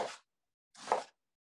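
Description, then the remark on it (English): A knife, set down at its tip, slices down through the layers of an onion being diced. There are two cuts, each a short crisp crunch ending on the board, with a brief silent pause between them and no voices. “I'm going to put the tip of my knife and just go down. I find that to be easiest.”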